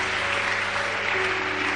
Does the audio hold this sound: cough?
no